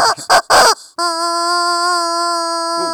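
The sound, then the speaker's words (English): An orange rubber chicken lets out a couple of short squeezes, then one long, loud, reedy squawk held steady for about two seconds before trailing off into a brief wheeze. “When you see me, I'm suited and booted with a damn orange chicken. I got 16 chickens, orange, yellow.”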